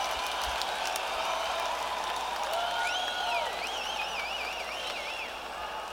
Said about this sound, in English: Crowd noise, crowd noise, crowd noise.